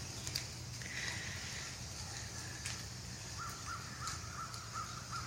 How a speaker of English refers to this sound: Listen to the rain. Birds are waking up. The geese are calling on the lake, river.